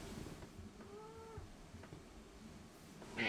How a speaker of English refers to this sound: hold please while I pick this yelling cat up and put her in my lap.